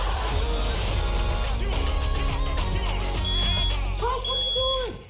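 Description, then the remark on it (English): A loud, full music track with high, steady electronic beeps cutting through the mix in short bursts, sounding much like a smoke alarm chirping over the song. “I honestly, when I first heard that, I thought, is my fire alarm going off?”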